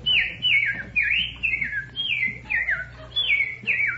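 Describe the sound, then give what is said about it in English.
A person whistles an imitation of bird calls: a quick series of about eight bright, swooping chirp phrases in a steady rhythm, clear over a faint low hum. “Then there's what are some other bird calls?”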